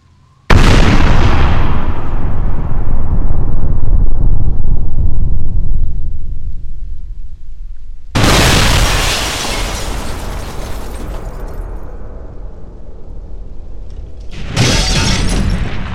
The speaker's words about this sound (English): You click the fuse. You bolt out of the building as fast as you can. And there's a horrendous explosion as the building collapses in on itself.